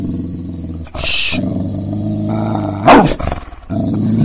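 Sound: dog growling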